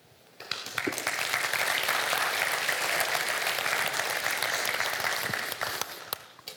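A room full of people breaks into steady, sustained applause that swells quickly, holds for several seconds with dense overlapping claps, then tapers off near the end.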